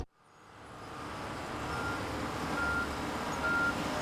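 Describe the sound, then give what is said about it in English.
A heavy truck engine rumbles steadily amid roadway noise at a road resurfacing site, and two short electronic reversing beeps sound near the end, moderately loud over the constant engine drone. “watch out for vehicles today because we weren't able to close off all traffic for the stretch of road we're resurfacing today.”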